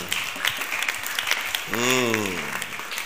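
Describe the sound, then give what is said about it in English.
A crowd claps for the Lord steadily and loudly throughout, a dense crackle of many hands, while a voice rises in a long sustained shout or sung note partway through. “Clap for the Lord!”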